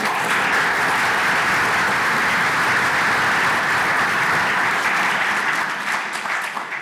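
An audience claps steadily to welcome a speaker who will talk about how Norway moved from paper-based to digital, a dense, even wash of applause that holds at a strong level for about seven seconds before tapering slightly at the end. No one speaks over it.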